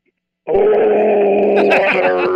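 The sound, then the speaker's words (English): A loud, raw guttural scream bursts in after a brief silence and holds steady for about two seconds, one rough, throaty voice straining at full force. “Give a guttural, like primal scream once I hang up the phone for you.”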